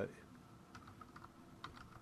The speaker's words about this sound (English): I'm talking and typing at the same time. There we go.